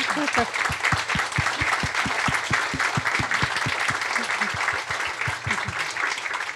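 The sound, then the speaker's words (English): An audience at a public conversation event applauds steadily, many hands clapping into a dense, sustained wash of sound, with sharp rhythmic claps standing out in quick succession throughout. “If it's not too sentimental or pathos-ridden, perhaps we can applaud the privilege of actually being in your company.”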